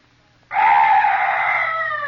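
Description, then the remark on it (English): After a moment of near-silence, a strange night bird lets out a loud, drawn-out, harsh cry that starts abruptly and holds steady until the end. “Oh, some night bird. Yes, that's all. Such a weird sound.”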